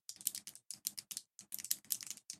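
A click pen snapped rapidly over and over, crisp, in quick bursts separated by brief pauses, with no one talking.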